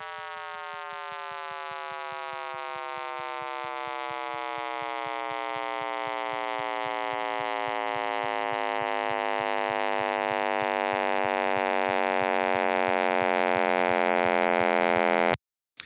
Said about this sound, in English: frequency spectrum goes to much higher frequencies than did previous analysis, and therefore offers a more high-fidelity rendition of the sound of the Big Bang.